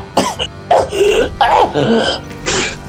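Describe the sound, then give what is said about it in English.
A run of about five harsh, raspy coughs in quick succession, loud, each a short hacking burst with a throaty edge, from someone waking up, with no speech around them. “Goop wakes up coughing.”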